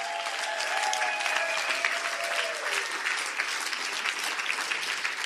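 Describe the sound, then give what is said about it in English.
An audience claps in praise to the Lord, a dense, steady wash of many hands applauding at even loudness for several seconds, with a few faint tonal cheers or whistles early on and no speech. “Let's give the Lord a praise clap.”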